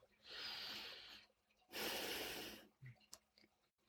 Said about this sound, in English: Our breath, our heartbeat, they are the signs that we are alive. And we are most deeply, fully alive when we slow down and breathe deeply and fully.